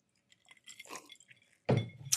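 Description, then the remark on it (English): Glasses clink together in a toast among a group of friends: a few light, scattered taps at first, then a louder burst of clinking and knocking with a sharp bright ring near the end. “Other than that, I'm going to raise my glass.”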